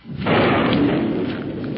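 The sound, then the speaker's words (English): A low thunder rumble from an approaching storm breaks in abruptly after a brief quiet moment, then rolls on heavily and steadily for over a second without fading, with no voices present. “Storm almost here now.”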